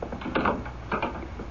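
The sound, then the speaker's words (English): Two knocks on a door, roughly half a second apart, each a dull, woody thud with a slight rattle, at moderate volume with no voices. “Imagine another knock on my door in one single day.”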